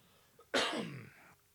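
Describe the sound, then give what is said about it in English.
A single forceful throat clearing, fairly loud, starting with a sharp burst and trailing off into a rough, rasping rumble over about a second, with no talking. “Allow me to clear my throat, please.”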